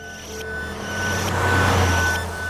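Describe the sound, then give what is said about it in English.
An old 1940s white truck with curved fenders and a red ambulance cross painted on its side rumbles past at speed on a dirt road, its low engine drone swelling to a peak with a broad rushing hiss before fading slightly, heard alone without any talking. “Then a rushing of a car on the dirt road behind me. It was an old 1940s white truck, curved fenders and red ambulance cross painted onto its side.”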